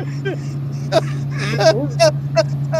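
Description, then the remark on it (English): A diesel generator sitting beside electric buses, providing power to charge their batteries, drones steadily with a constant low, even hum, while a person's voice breaks in intermittently over it. “And when you walk up, there's the generator sitting there, a diesel generator.”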